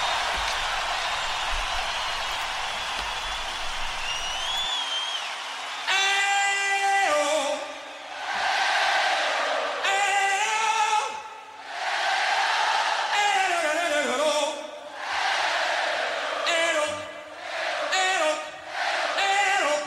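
A huge stadium crowd roars, then a lone singer belts out short vocal phrases and the massed crowd sings each one back, trading loud calls and responses in a steady back-and-forth rhythm.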